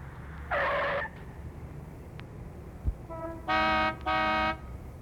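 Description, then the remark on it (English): City traffic noise in town: a low background rumble with a short horn blast, then a double honk a few seconds later, fairly loud. “Or if the scene takes place in the city, then you want to have, traffic noises and things like that to give you the idea that you're somewhere in town.”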